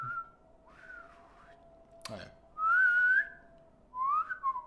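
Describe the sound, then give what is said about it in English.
A person whistles a string of short, chirpy bird-like phrases that swoop up and down, fairly loud, broken by a sharp click midway, with a brief spoken remark and a faint steady hum. “And I use a series of fucking points and whistles with these motherfuckers.”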